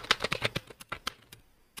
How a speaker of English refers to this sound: It's a glowing one as well. It's a gaming keyboard.